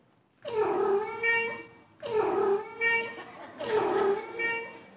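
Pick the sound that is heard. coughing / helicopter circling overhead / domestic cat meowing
domestic cat meowing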